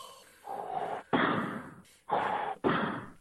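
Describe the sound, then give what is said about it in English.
A man breathes heavily and loudly straight into his microphone, four long noisy bursts in a row with brief pauses between, harsh with no talking. “I'm trying to go to the bathroom, but he's breathing into his microphone so loud. That's insanely loud.”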